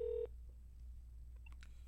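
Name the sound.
telephone number being dialed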